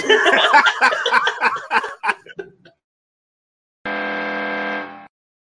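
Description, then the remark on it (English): A single harsh, flat game-show buzzer blares for about a second, loud. It follows a short burst of snickering laughter that trails off into silence. “Dang, I got a buzzer.”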